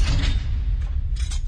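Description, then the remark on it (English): A pencil is ground in a sharpener, a continuous rough scraping with a low rumbling undertone and brighter raspy bursts near the end, fairly loud with no voices. “So I'm going to go with a pencil being sharpened.”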